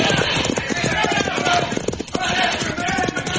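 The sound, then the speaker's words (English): Fast, rhythmic hoofbeats of galloping horses pound steadily throughout, dense and fairly loud, with a busy background that may include voices. “Now, Pancho, run for your horse.”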